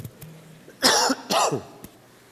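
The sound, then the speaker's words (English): Two loud, harsh coughs in quick succession, followed by a faint click; no talking in between. “Let me take a moment and cough.”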